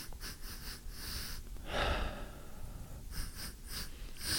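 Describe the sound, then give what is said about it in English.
A person sniffs a sweet and salty snack: a series of short, breathy inhalations through the nose, with one stronger, longer sniff near the middle and a few quicker ones after, no talking. “All right, let's give this a little sniffy sniff.”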